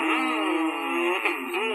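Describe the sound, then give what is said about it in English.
A race car engine revs in a steady, loud drone for nearly two seconds, its pitch wavering and briefly surging, with no talking over it. “How about race car drivers?”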